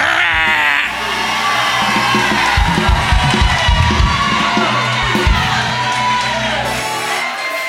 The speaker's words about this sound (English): I stopped by to tell you, you got a bishop that knows how to roar. I stopped by to tell you, you got a bishop that needs to know, are you a lion or are you a sheep? But I need all lions to roar.